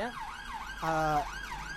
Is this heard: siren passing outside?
yes